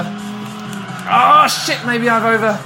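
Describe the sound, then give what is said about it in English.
During a race, a racing car engine drones steadily, then rises as tires squeal sharply through a corner, the squeal sweeping and wavering before the engine settles back to a strained hum. “I'm catching up with the black car who's in first position”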